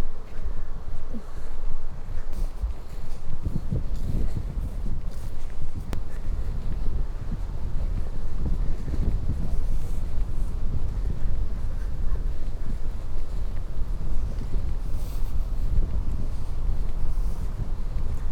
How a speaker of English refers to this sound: because it's very windy up here. It's not an easy place to be a tree, let alone having cows grazing, but even under any circumstances.